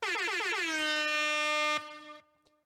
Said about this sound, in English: Have some air horns.